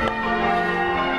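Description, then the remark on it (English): Church bells of Hughenden Church ring loud, heard from right by the church, their overlapping tones humming and sustaining throughout without a break, and no voices can be heard. “But we're, as you can hear, we're right by the church.”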